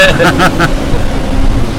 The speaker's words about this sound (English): We've got a big truck coming by. Hold on. FedEx making deliveries. Yeah. That's everybody's Amazon order right there.